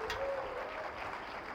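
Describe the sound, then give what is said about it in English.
A crowd claps steadily for a pastor, a dense, even wash of applause that holds at the same level throughout, with no voices over it. “Come on, give Pastor Lanley a round of applause.”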